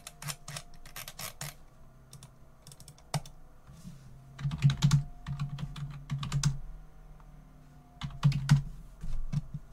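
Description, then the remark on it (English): Rapid, uneven keystrokes on a computer keyboard clatter in bursts as someone searches for something, with a low steady hum underneath and no one speaking. “And as you guys are typing that in, I'm going to go randomly search for something.”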